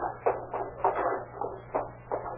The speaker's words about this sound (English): An hour and a half later, the measured clop clop of horses hoofs broke the stillness of the night.